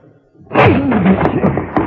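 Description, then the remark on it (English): A door is rammed by Captain Shaw on Mr. Moto's order and bursts open with a sudden heavy crash after a moment of near silence, followed by loud splintering and clattering, with a few sharper knocks near the end. “Break down the door, Captain Shaw.”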